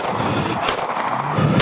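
Two sharp, loud gunshots crack out about a second apart over a dense, rumbling background of noise, each one a sudden burst that cuts off quickly, as police officers return gunfire at carjacking suspects during a police chase.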